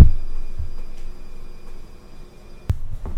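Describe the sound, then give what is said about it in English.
A washing machine hums steadily at low volume, then a single sharp, limp-wristed slap of a hand against it, meant to shut it off, lands near the end, followed by a brief rattle; nothing happens and the machine keeps running. “limp-wristedly slap the washing machine and nothing happened”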